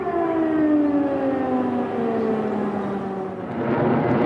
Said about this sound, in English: It started before dawn. Ukraine woke to explosions around the capital, Kiev. Air raid sirens blared out across the capital.